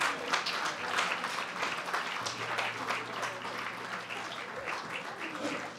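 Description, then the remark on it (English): An audience claps steadily for several seconds, a dense, continuous patter of many hands with a low hum underneath and no clear speech. “Come on, let's keep clapping, y'all. Keep clapping.”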